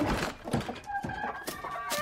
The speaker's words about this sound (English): Mary thought the least she could do was let the Moores' chickens out of their coop.